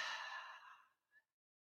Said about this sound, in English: we're going to begin with just three deep breaths together as a community, just to bring our energy all into alignment with one another. So breathing in through the nose, out through the mouth, nice release of energy.